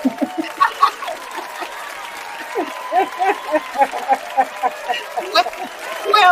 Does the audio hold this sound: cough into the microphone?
no